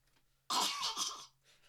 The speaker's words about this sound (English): You're just clearing your throat.